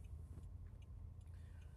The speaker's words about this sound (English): So case in point to today, and if you hear a clicking, I'm recording this while I'm in my car.